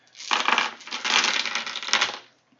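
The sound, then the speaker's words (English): Dice clatter and rattle against a tabletop for about two seconds, a dense, crunchy jumble of small hard clicks with no talking. “No, I'm just going to use these dice.”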